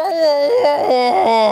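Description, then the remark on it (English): A voice imitates a giant beetle's roar: a loud, sustained, wavering cry lasting about a second and a half, its pitch swooping down and back up a few times, with no words. “And it makes a very loud roar that Grundledor and Rhoda can't hear.”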